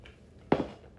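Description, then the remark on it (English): A single short, wet sip of water breaks a near-silent pause, a brief burst that fades quickly back into quiet. No one speaks. “Hold on, let me take a sip of water.”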